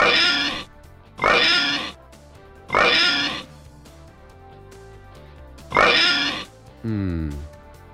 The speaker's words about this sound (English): Hand off the oinker. That's four, a four oink.